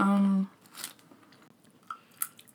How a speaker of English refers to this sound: And now these pretzel chips. So. Oh, this is hard to chew quietly. Right? They're very loud. They're crunchy.